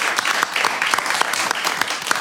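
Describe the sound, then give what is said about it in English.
A crowd gives a round of applause for the box, clapping steadily, dense overlapping handclaps forming a continuous bright wash with sharp individual claps popping out, fairly loud throughout with no voices. “Round of applause for the box.”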